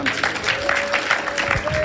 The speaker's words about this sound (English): Oh, I'm the righteousness of God. Clap your hands.